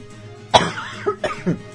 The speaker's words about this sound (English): Sorry about that. I tried to fight it, made it almost all the way through that entire little chatting, and then it just, there was the cough. I couldn't, and I don't have a cough button, never figure out how to hook one on my computer.